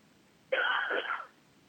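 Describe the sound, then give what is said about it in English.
A single harsh cough bursts out suddenly from a person who has had a cough for a week, lasting under a second before fading into quiet room tone, with no talking around it. “I don't mean to cough.”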